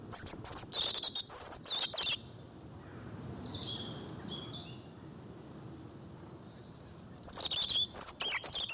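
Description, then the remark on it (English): A European robin sings in bursts of high, thin, warbling phrases, pausing in the middle while softer twittering continues over a faint outdoor background. “the robin that sings in your garden in the summer”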